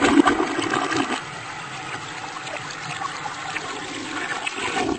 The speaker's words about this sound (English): We should just put in the sound of a flushing toilet, actually. That would be a flood going away. Uh-huh. Yeah. We need the sound of a toilet going in reverse.